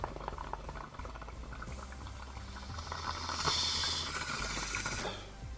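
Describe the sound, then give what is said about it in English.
Bong water bubbles and gurgles continuously for several seconds during a long pull as a bowl is smoked, swelling into a louder, hissing rush near the end before easing off. “Let's just go ahead, snap this bowl, and then we'll get into what we have coming next week for you guys to enjoy.”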